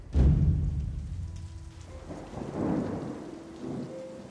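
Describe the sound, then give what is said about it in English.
Steady rain falls in a broad hiss, with a deep rumble of thunder rolling in at the start and lingering beneath the downpour. No voices are heard. “It was then that Edom felt the first touch of rain against his skin.”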